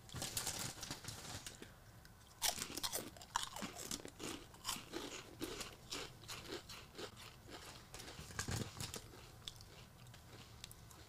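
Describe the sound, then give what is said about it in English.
Crunching of a Funyuns onion-flavored ring snack, bitten whole and chewed, with repeated sharp, irregular crackles over about ten seconds and no talking. “They're very crunchy.”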